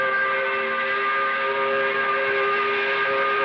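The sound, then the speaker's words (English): A steam whistle blows one long, steady 5 o'clock blast, loud, with a rich chord-like tone that holds without a break for the whole stretch. “Yeah, we're a little late, but we're going to do it anyway, blowing that 5 o'clock whistle.”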